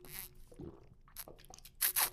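During a snack and drinking-water break, a crunchy snack being bitten and chewed, with several sharp, crackly bursts spread unevenly over a couple of seconds, the loudest pair coming near the end. No one speaks.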